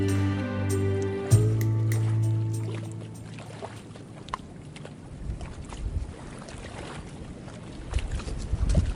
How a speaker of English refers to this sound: The sound of water lapping against the shoreline is all too common in Scotland. Indeed, Scotland might be called a land of lochs.